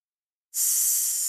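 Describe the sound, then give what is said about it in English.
After a half-second of silence, a person breathes out through an open mouth in a long, steady, sharp hiss that imitates a snake, as a 'snake breath' breathing exercise taught to kids. The hiss starts abruptly and holds at even loudness until the end. “Or a snake, same idea.”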